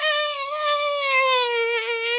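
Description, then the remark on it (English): A voice imitates a monster's roar: one sustained, high, screeching wail with strong overtones that slowly sinks in pitch over about two seconds, loud and steady, with no talking. “No, the American edit, they call him Gigantus, and they give him Anguirus's roar, so you don't even hear his roar, and he's called Gigantus.”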